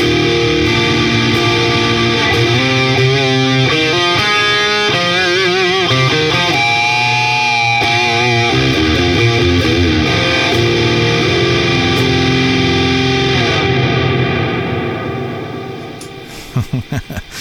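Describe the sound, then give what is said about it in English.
A heavily fuzzed, distorted electric guitar, played through a pedal running two fuzz circuits and a distortion circuit in parallel, plays thick sustained chords and bends, loud, with a saturated buzzing edge before the notes cut off and ring out at the end. “Yes, that is two fuzzes and a distortion circuit running parallel together, and it just sounds so damn good.”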